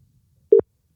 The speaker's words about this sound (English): Now, we've got that phone connected. Let's get mum on the line. If you can.